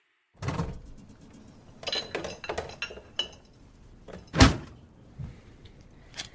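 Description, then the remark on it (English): A key rattles and clicks in a lock, followed by a louder thunk as the latch gives and a door is pushed open, with scraping and clinks and no talking. “All right, so this key presumably opens the door.”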